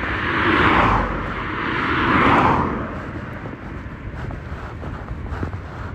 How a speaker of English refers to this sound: isn't traffic abominable?